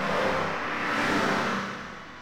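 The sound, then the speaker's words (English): A dense, continuous wash of highway traffic noise, recorded on a highway and processed by computer to make the cars and trucks sing, with engines swelling and easing over a couple of seconds at steady, fairly loud volume, no voices present. “In one of his compositions, he recorded a highway and fed the traffic noises into the computer to make those cars and trucks sing.”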